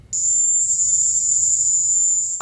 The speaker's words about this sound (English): That was this. The Indies short-tailed cricket. Oh, behold, the fearsome cricket in all its fearsome glory.